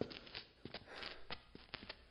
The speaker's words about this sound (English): Dude, is someone following us? What? I swear, I hear footsteps. And they aren't ours.